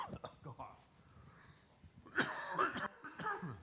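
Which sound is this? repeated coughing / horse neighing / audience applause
repeated coughing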